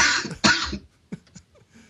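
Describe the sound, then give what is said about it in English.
A loud, harsh cough in two quick bursts, followed by a few softer throat sounds trailing off, with no talking. “Sorry, mine cough.”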